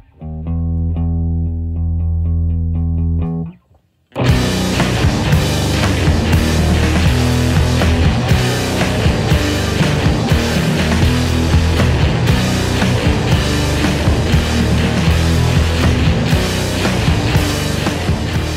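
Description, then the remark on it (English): A sustained, droning guitar chord rings out alone, cuts to a brief silence, then heavy distorted rock crashes in loud and dense with pounding drums, driving steadily to the end without vocals. “I love the distortion part on this. It just sounds really heavy and really like just good.”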